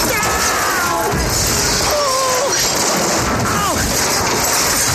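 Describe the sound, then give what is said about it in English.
An out-of-control Caterpillar D6 bulldozer crashes through a house: a loud, unbroken roar of grinding, splintering and shattering debris, chaotic for the whole stretch, with a voice briefly rising under the din. “I'm crashing through somebody's house.”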